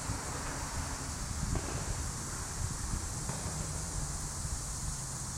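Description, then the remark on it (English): A steady, high-pitched cicada buzz drones on without a break, over a low, gusty rumble of wind. No one speaks. “Can you hear the cicadas?”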